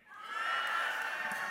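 A church crowd of many voices shouts out together all at once on a count of three, a dense, sustained burst of overlapping yelling that swells quickly and holds steady for about a second and a half.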